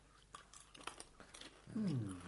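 Crunchy munching of popcorn, with a quick series of irregular crisp bites and chews, followed near the end by someone starting to speak.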